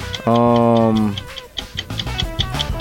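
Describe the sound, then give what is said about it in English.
A loud, low buzzer tone sounds for about a second, then a countdown timer starts ticking in a quick, steady rhythm of bright, even clicks over a faint background. “But your timer starts now.”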